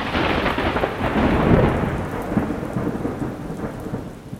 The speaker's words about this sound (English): And I'm thinking, this same precious, vulnerable little guy was created by the being that has created this incredibly loud, scary thunderstorm that's rocking the skies.